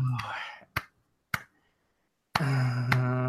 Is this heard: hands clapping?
yes